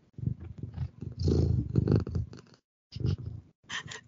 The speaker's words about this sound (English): Just some cat ASMR for you.